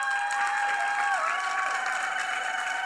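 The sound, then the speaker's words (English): A live audience applauds a guest seated among them, steadily and loudly, a dense wash of clapping mixed with cheers and whoops that stays at full strength throughout without letting up. “And we need you to put your hands up. A big round of applause”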